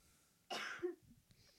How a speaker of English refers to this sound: She's okay, people. She just has to cough. You gonna make it?